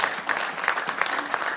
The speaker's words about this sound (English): And whenever God's doing a work, I'm waiting while you clap your hands.